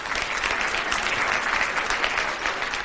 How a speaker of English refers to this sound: Let's give him a round of applause again.